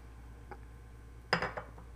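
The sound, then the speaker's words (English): A person takes a big sip from a glass, with a faint early tap and then a short cluster of clinks and slurps, against a low steady hum. No one speaks. “Needed another big sip.”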